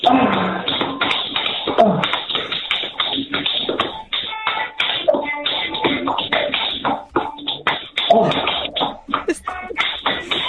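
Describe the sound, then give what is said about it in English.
Rapid tap dancing footsteps, danced to the Grange Hill theme, clatter in a dense, busy rhythm throughout, fairly loud and slightly muffled, with quick heel-and-toe taps and shuffles running together without pause. “Tap dancing to the Grange Hill thing.”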